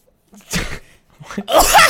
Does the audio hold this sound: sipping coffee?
no